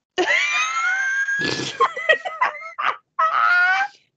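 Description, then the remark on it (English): A person imitates a buffalo with a loud bellowing call: one long drawn-out honk, a run of short choppy grunts, then another sustained honk. “I'm like a buffalo.”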